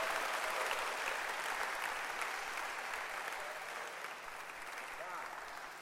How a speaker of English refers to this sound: Clap your hands for Jesus if you are excited.